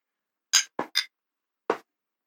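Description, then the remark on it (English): Glasses of sour IPA beer clink together in a toast, clear: three quick bright chinks in a row, a short pause, then one more, with no talking over them. “Cheers, up, boys. Cheers, boys.”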